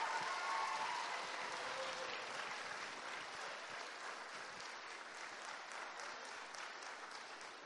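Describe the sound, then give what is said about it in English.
A church audience applauds steadily for a performer, many hands clapping in a dense, continuous wash that holds fairly even and eases slightly toward the end, with no voices standing out. “Can we just give him a little more applause?”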